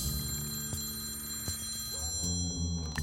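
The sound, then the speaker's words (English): A corded telephone bell rings again with sharp, evenly spaced clangs less than a second apart, fairly loud, over a steady low humming drone, with no one speaking. “The telephone rings again.”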